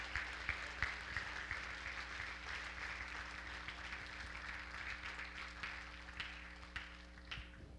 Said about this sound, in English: So let's give them a nice big round of applause for making all of this happen.